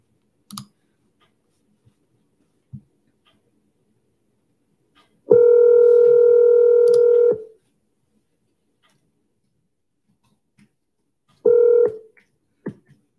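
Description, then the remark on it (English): A telephone dialing a call: a few faint clicks, then a steady, buzzy electronic tone lasting about two seconds, silence, and a shorter repeat of the tone. No one speaks. “let's give Tanya a call here.”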